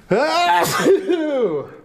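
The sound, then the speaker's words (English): A single voiced sneeze, a drawn-in tonal 'ah' breaking into a sharp, breathy burst and trailing off into a wavering vocal tail, fairly loud and lasting under two seconds. “Bless you.”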